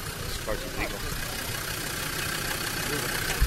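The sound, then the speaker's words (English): A diesel Land Rover 110, brought over from England, idles on a street in Nantucket with a steady, low, chugging rumble that holds throughout without revving. Faint muffled voices sound in the background. “It's a diesel. It's a diesel Land Rover 110.”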